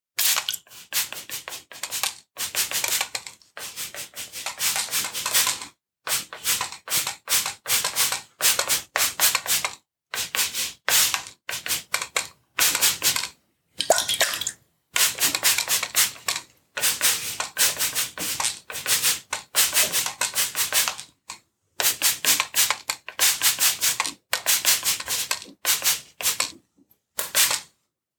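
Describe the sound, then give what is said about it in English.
A spray bottle spritzes water onto a person's body, arms, hands and fingers over and over in short, hissy bursts, dozens of quick squirts with brief pauses between them, bright and airy with no voices. “So I think I've sprayed down everywhere that needs to be sprayed.”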